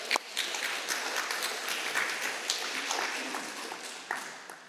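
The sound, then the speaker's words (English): A church audience breaks into sustained applause on a Sunday for the launch of the Christ City Surrey church plant, many hands clapping in a dense, steady wash with a few bright whoops and cheers rising above it, holding level for several seconds. “And it's a very, very special Sunday because this Sunday we're launching Christ City Surrey, which we can cheer about, right?”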